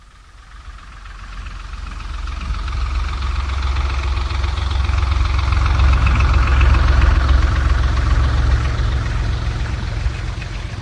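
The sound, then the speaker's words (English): A motor launch engine runs steadily on a rough sea with a deep, throbbing low rumble and a chugging knock, swelling in loudness over the first few seconds and then holding constant, with no voices. “sorry about Billy's launch. He shut off his engines too early.”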